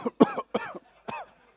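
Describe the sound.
A voice imitates a string of three exaggerated, fake-sounding coughs in quick succession, fairly loud, with brief gaps between them, mimicking airplane passengers fake-coughing as a person boards the plane.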